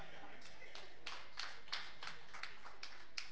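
A group claps together in a loose, fairly steady rhythm, the sharp claps sounding soft, continuing for a few seconds with no one speaking; the audience at a service applauding a woman.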